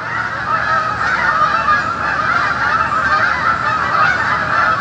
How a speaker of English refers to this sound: At 8:38 a.m., a flock of Canada geese flew in their typical V-shaped formation over the Old North End neighborhood of Burlington. They were traveling southwest.